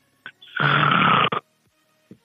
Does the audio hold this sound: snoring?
yes